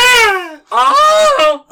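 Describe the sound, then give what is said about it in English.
A person imitates a Wilhelm scream: loud, strained vocal yelps, a falling cry followed by a longer wavering one and the start of a third, high-pitched and harmonic-rich. “With a Wilhelm scream. Give me a Wilhelm scream.”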